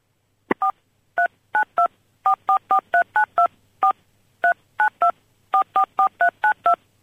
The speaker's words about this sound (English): I didn't know he was going to play it on the phone keypad.